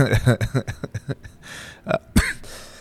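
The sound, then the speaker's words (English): After a stretch of speech and a rough, breathy throat noise, a single loud, harsh cough bursts out sharply directly into the microphone, then trails off into soft breath. “excuse me, just coughing directly into the mic.”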